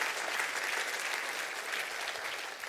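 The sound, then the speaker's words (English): A church audience claps their hands together in thanks to the Lord for grace, a dense, steady wash of many overlapping claps that stays loud and even throughout with no voices standing out. “Would you clap your hands and say, "Thank you, Lord, for grace."”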